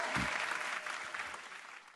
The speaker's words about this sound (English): Hand clap, hand clap.